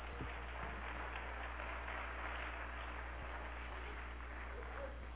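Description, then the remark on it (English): A church audience claps their hands together for the Lord, a dense, steady wash of applause that carries evenly through the whole stretch at a fairly soft level, with no voices over it. “Let's give the Lord a hand clap, please.”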